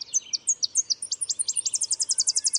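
A Tennessee warbler sings a series of sharp, high chips that speed up into a fast, dry trill, clear with no other sounds around it.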